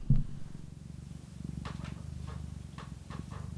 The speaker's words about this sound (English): Sorry, are you getting purring on mic?